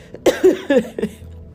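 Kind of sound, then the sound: human body sound, cough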